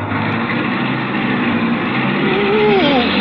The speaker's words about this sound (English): Of course not. You've got to step on the brake. Step on the brake? To start my car?